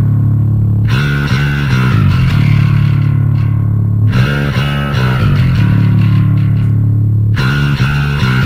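A heavily distorted, gritty bass guitar plays a loud metal riff on its own, chugging low notes in a driving rhythm, with fresh attacks marking each new phrase and no other instruments.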